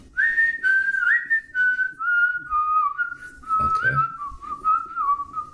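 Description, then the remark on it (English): A person whistles a slow, descending melody from the film Kill Bill, of sustained, wavering notes, clear, with a faint rustle briefly underneath partway through. “Yeah, I'm trying to think of the last thing I could just whistle.”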